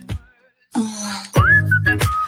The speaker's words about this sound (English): I wonder why there's whistling. I don't know.